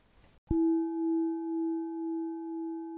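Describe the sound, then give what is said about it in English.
A gong is struck once to begin a meditation after a brief hiss, then rings on alone with a steady low tone and fainter overtones, its loud hum pulsing slowly as it sustains. “So I will ring my gong and then we will start our meditation with the theme of settling.”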